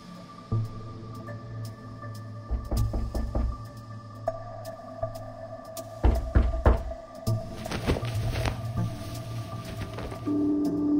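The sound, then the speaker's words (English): Two bursts of several firm knocks on a door, a few seconds apart, against a low steady hum and faint room noise. No one speaks. “And then someone was knocking on my door.”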